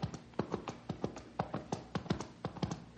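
Horse hooves clip-clop in a quick, uneven gait, a steady run of sharp hollow knocks at moderate volume with no voices over them.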